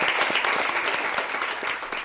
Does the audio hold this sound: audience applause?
yes